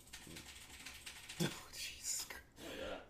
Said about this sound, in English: Is this tonight the night of annoying noises? Like, hey. My keyboard's really good at that. My keyboard tray, I should say.